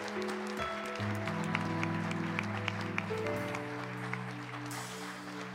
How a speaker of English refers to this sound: Give Jesus a hand clap this morning.